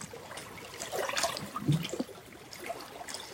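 Water trickles and gurgles softly beneath frozen winter ice by a shore, with small bubbling bursts and a low muffled swell midway. Quiet and steady throughout, with no voices.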